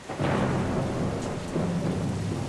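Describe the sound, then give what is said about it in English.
Low, rolling thunder rumbles beneath a steady wash of heavy rain in Los Angeles, the downpour hissing continuously throughout, fairly loud, with no voices present. “And then it rained, quite a lot for Los Angeles.”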